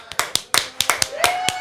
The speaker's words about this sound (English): will you tell everyone out there to applaud because we're in the halfway point?